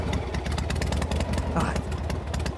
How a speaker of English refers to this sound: Oh, he's coming in. So he's on a motorcycle. He has a beautiful woman on the back of it.